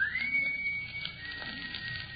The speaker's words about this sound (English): That whistle? Yes. I imagine it's just one of the fellows outside or something. It sounded as though it were right here in this house. I think it was in the cellar.